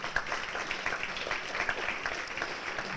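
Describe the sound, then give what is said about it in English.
A crowd applauds steadily for about three seconds, a dense, even wash of many hands clapping at a moderate level with no voices standing out. “I think that needs some applause.”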